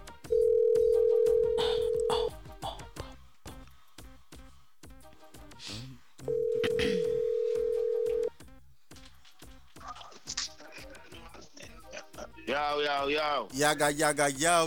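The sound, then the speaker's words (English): A phone call being placed: faint clicking, then a steady ringback tone purrs twice with a pause between, clear, followed by muffled voice-like sounds. “Right now, people, you don't know who's on the phone line.”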